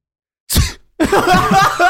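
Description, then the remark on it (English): A single abrupt, forceful sneeze, one of many that morning, bursts out after a moment of silence, then a brief pause gives way to about a second of loud voiced, murmuring vocal sound. “been sneezing a lot this morning. That one came on hard and fast.”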